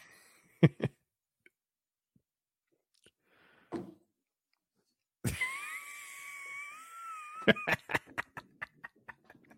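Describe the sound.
After a few soft clicks, a loud, exaggerated strained grunt, imitating the grunt of an athlete throwing, bursts out while the person drinks and stretches into a wavering, drawn-out groan, then breaks into a quick series of sputtering, choking bursts.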